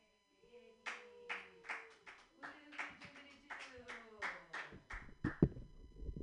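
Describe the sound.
An audience claps in a steady rhythm, about a dozen loud sharp claps at an even pace, while voices call and hoot over them.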